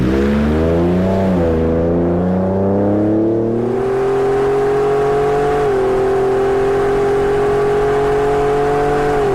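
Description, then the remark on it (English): A stock truck engine revs up loudly and then holds a steady, throaty drone, its pitch climbing early before settling into a sustained hum, continuous with no talking. “Same truck, right? It's got to be a truck.”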